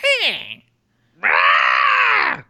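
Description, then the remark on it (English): A screaming puppet toy, stepped on in a school, lets out a short shriek that slides downward, then after a brief pause a louder, sustained raspy scream lasting over a second, alone. “heads into the school, which is eerily quiet until she steps on that fucking screaming puppet again.”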